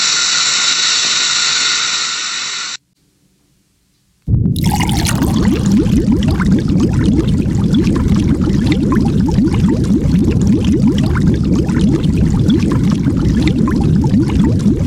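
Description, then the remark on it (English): Calcium carbonate (marble) fizzes in hydrochloric acid, giving off carbon dioxide gas, with a loud, steady stream of crackling bubbles that lasts about ten seconds. A short tonal hum and a brief silence come first. No one speaks. “When calcium carbonate, marble, is placed in hydrochloric acid, carbonic acid is produced, which is converted to gaseous carbon dioxide and water in a gas-forming reaction.”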